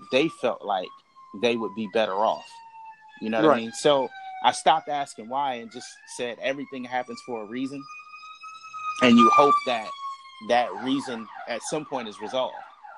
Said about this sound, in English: And just so you know, this is how live we are. That was a fire truck or emergency vehicle. and we don't care. We keep it pushing.